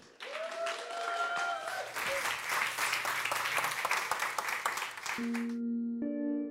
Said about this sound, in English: The geologic reveal begins now. Give a round of applause for Miles Traer.